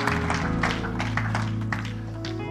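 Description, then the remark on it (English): A church audience claps along in praise of God in a steady, rhythmic beat while sustained organ or keyboard chords hold underneath, the clapping moderately loud and continuous throughout. “Give Him a hand clap of praise in this house.”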